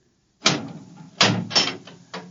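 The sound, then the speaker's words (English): A door is opened, making a series of heavy clunks and rattles, about four distinct knocks of the latch and wood over a couple of seconds, with no voices. “Open the door.”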